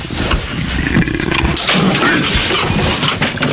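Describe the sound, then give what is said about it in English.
A leopard that has escaped from a zoo growls with a deep, rumbling snarl that carries on steadily for several seconds, loud with no one speaking. “We're live from the zoo where a leopard has escaped.”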